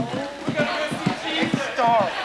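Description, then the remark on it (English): A steady run of hollow clip-clop knocks mimics a horse's hoofbeats, about two per second, with voices chattering over the rhythm. “That sounds like a horse.”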